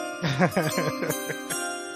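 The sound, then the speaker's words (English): A bell rings out in a steady, sustained shimmer of overlapping tones, while a voice makes a series of rising and falling sounds over it for about two seconds. “Well, sorry, you want to ring the bell?”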